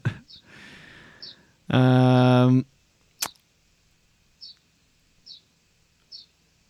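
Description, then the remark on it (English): Short, high chirps repeat every second or so from a bird right outside a window, heard from inside a room, interrupted by a loud harmonic honk-like burst and a sharp click. “I'm just in my room and you can hear there's a bird right outside my window.”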